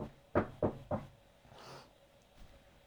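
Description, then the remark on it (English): Three quick, evenly spaced, distinct knocks rap on a wooden door, followed by a soft rustle and quiet background noise. “Anyway, he sat around, and then he was just sitting around feeling sorry for himself when he heard a knock at his door.”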